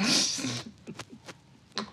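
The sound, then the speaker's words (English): A single loud sneeze bursts out as a sharp, hissy blast, then gives way to a few faint, short vocal sounds and breaths. “I mean, God bless you.”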